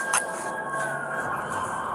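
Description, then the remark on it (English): Emergency vehicle sirens wail steadily in the background as they approach, heard on a police officer's body camera during a standoff with a gunman, a sustained high tone holding at a moderate level over a wash of noise for the whole two seconds. “Can hear sirens approaching in the background.”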